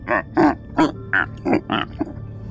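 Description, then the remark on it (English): A person imitates a pig with a quick string of about seven short, nasal oinks and snorts, fairly loud, in an uneven rhythm with no other talking. “Don't threaten her pig, Farron.”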